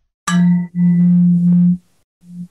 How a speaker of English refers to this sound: Me gusta. I get that little echo in. That was pretty good.